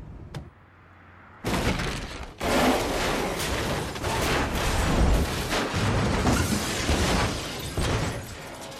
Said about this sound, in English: So he's hit the concrete wall, flipped he's the car. He's intentionally crashed and flipped the car with the hope, I guess, of killing Vincent. Now, that stunt, when he hits the wall, flips over, was captured in one take.